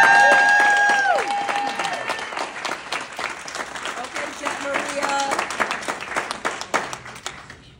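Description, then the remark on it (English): A crowd applauds and cheers for a young woman, a dense, steady patter of many hands clapping that stays loud throughout, with a few voiced whoops and cheers rising above it near the start and middle. “Make some noise for this young lady.”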